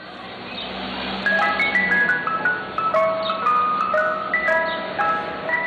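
A Mister Softee ice cream truck jingle plays its tinkling, music-box melody in a steady run of bright repeated notes, fairly loud, with a low rumbling hum underneath and no talking.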